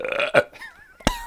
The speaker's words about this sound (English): It's a burp.